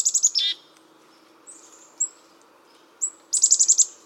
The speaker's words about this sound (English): You'll discover that a Swainson's thrush starts to sing on almost the same day each year.